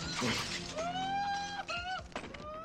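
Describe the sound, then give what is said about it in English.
Glass shatters in a loud, bright crash right at the start, followed by lingering tinkling and ringing tones while voices sound over the aftermath. “That was my favorite glass!”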